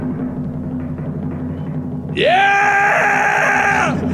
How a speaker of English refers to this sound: Oh my gosh. Stop yelling.